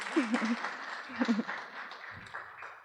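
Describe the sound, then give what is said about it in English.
A small audience claps steadily for a few seconds to welcome a speaker, a soft, dense patter of many hands, with a couple of brief voices or murmurs rising over it. “could we have a little round of applause?”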